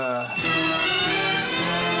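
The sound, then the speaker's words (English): A mobile phone rings with a bright, steady electronic ringtone full of layered tones, sounding loudly and continuously for a couple of seconds without any talking. “My fucking phone is ringing.”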